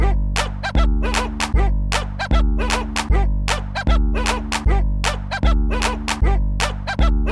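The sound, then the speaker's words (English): A bouncy dog-themed music jingle with a steady beat, sharp bark-like yips punctuating each step of a thumping bass line, loud and upfront with no talking. “I'm gonna play the dog music right now.”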